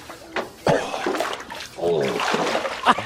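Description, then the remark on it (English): Water splashing and sloshing in uneven bursts as a heavyset man moves around, wallows and rolls over while washing himself, with a man's voice talking over part of it. “Because I'm a bigger guy with, like, folds and flaps, and I have to move around, like, almost like a pig in a way, and wallow.”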